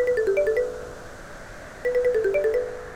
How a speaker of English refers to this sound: She set her phone alarm every 30 minutes to awaken her if she did so.